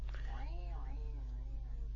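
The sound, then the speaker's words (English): A person does a drawn-out vocal meow imitation, its pitch rising and then sliding down, heard over a steady low electrical hum that continues after the voice fades. “Why have you suddenly turned to a cat?”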